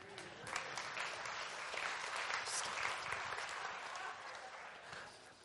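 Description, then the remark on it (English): An audience claps steadily for several seconds, a dense, bright wash of many hands with a faint murmur of voices mixed in, holding level before tapering slightly at the end. “If you like it, you should clap.”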